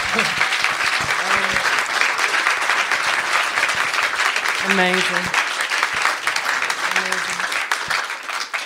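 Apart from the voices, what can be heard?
audience applause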